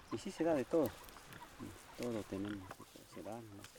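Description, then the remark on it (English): A pig on a 10-meter leash grunts and oinks several times as it comes up to greet visitors on a steep hillside farm, in short bursts of nasal, tonal squeals and snorts with brief pauses between them, fairly loud against a quiet outdoor background. “A very eager pig on a 10-meter leash comes up to greet us.”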